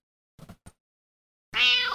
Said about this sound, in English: So you got a cat. Yep. Is that a generic cat or a specific cat? That is Sicily.